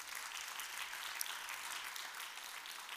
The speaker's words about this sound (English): Amen. Clap your hands. Amen.